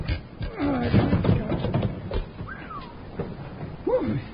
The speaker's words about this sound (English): On the suspense suspicion that Ace Batty is hiding Kate's stolen goods in a cellar under his store, Bill and Jingles wait until after dark and go back to pry up the trap door in Ace's loading platform.